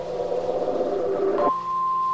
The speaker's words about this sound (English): I can hear lots of pumps and engines. Can you?